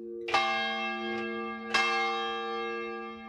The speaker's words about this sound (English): That's a bell.